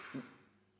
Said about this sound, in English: Because, did you hear that giant cough? Yeah, someone's in the house. I heard him walking around before.